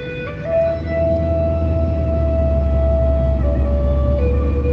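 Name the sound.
emergency vehicle siren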